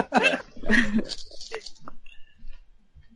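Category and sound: animal, dogs barking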